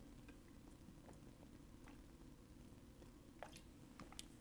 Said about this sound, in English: And then I bring again, I'm drinking a sip of water. And I'm bringing the water bottle into the frame.